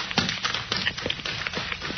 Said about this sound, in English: Yes, a man running up the road, past the two fellas trudging home.